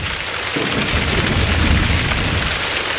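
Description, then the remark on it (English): Many people slap their legs in unison, making a dense, steady patter that sounds like heavy rainfall, loud and continuous with a low rumbling undertone and no talking. “Now they're slapping their legs.”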